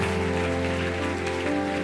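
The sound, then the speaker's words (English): Steady, dense applause from a church crowd for teachers on stage, a continuous crackling wash of many hands clapping at even loudness, with a low steady hum underneath and no voices. “Come on, give our teachers a big round of applause.”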